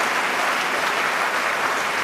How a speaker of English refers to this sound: Let's clap for Jesus. Let's clap for Jesus. Hallelujah.